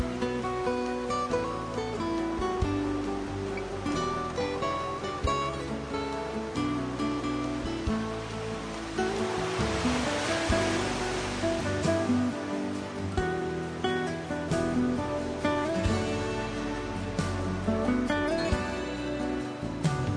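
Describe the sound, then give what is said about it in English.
Ocean waves wash ashore in slow, soft surges beneath steady ambient music with sustained tones, one fuller swell rising near the middle. No one speaks. “Breathe long, slow, deep breaths and feel yourself joining with the water and feeling more and more your connection with the entire ocean.”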